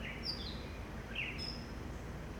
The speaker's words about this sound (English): Hello, sweet birds.